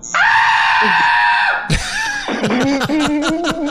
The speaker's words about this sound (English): A scream that loud can only be silenced by a gag ball.